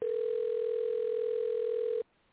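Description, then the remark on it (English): A single steady electronic ringing tone over a phone line, one even two-second burst that cuts off abruptly into quiet line hiss, with no one talking. “I hear a phone ringing.”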